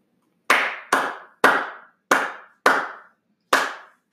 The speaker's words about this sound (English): A solo clap. Solo clap.